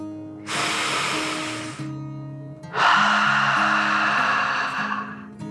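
A deep breath: a long, airy inhale, a brief pause, then a longer and slightly louder hissing exhale, with soft sustained musical tones underneath.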